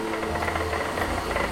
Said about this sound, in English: Rarely is it silent in the lab. You'll hear hammers punching. You'll hear vacuums running. You'll hear the sewing machine going.